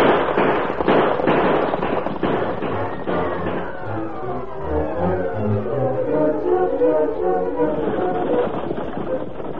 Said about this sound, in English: Inside the stagecoach, Ebenezer was startled when the gunfire was heard.